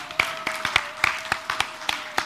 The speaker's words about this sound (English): You guys did such a great job. Can you give them a big round of applause? So good.